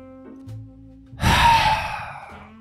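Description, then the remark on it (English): A single loud, heavy breath rushes close into the microphone, a broad noisy exhale of about a second with a faint lead-in, standing alone without any talking. “You missed the amazing breathing techniques he exhibits, though.”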